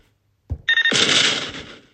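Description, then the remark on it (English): A doorbell sound effect: a low thump, then a bright, tonal chime with a rapid ringing flutter that swells into a sustained two-part bell tone before fading, heard alone without any talking. “Okay, so that was the door, but remember, there's somebody at the door.”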